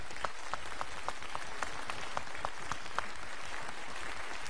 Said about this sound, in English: Let's give a round of applause to these men today.